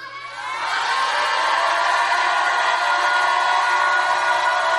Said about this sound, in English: If you believe it, shout like you've never shouted before.